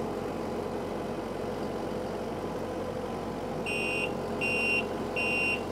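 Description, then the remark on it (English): A steady asphalt paver engine drone runs throughout, then the paver's backup alarm chimes in near the end with three loud, evenly spaced beeps over the rumble. “Yeah, that'll be the first thing that comes off right there, the backup alarm.”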